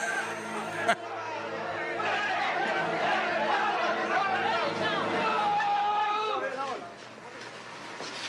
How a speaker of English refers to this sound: Oh, wait a minute. There's like a rabble.